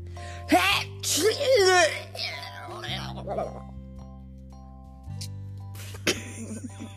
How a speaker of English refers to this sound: Oh dear. I believe that the monster swallowed Max whole and then promptly sneezed him back out. Yuck.